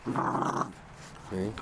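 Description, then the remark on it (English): A dog makes two low growly vocalizations, its way of talking while nudging fingers, a longer rumbling one followed by a shorter one after a brief pause, sounding more like grumbling chatter than aggression. “This is his way of talking. It's like a, sounds like a growl, but it's a, it's just a continual nudging my fingers, trying to.”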